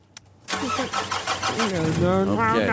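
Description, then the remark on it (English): After a small click, a car engine cranks and catches with a loud roar, then settles into a rough running rumble while a voice speaks over it. “Here we go. Start the car.”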